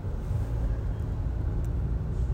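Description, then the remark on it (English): A steady low rumble of car engines and road noise fills the whole stretch, heavy and continuous, from bumper-to-bumper traffic on a paid express lane of a highway, with no voices. “Bumper to bumper traffic on the express paid lane.”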